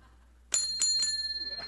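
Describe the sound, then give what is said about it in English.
A heavy metal cable car bell is struck three times in quick succession at a San Francisco chamber event, each clang bright and sharp, with a clear ringing tone that sustains and shimmers between and after the strikes. “as a token of our gratitude, you have something you probably always wanted, your own very own cable car bell. It's quite heavy, and it sounds great. If you'd like to give it a ring, please do so.”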